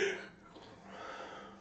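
A person gives a soft, drawn-out yawn, a breathy voiced exhale that starts slightly stronger and trails off, heard up close but quietly with no talking.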